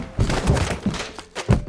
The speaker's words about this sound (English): Remind me to watch where I'm walking next time so I don't run into your closet door. Hey, at least you knocked down our suitcases so we can start packing.